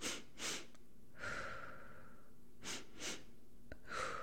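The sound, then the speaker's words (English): Two quick sniffing inhales through the nose followed by one long, airy exhale through the mouth, a breathing strategy repeated twice in a steady rhythm, fairly quiet with no talking. “Also, I used the breathing strategy of 2 short breaths in, 1 long breath out. So in through the nose, out through the mouth.”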